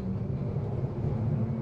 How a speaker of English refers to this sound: Stand clear of the closing doors. A warning beep sounded, and the train rolled out of the station.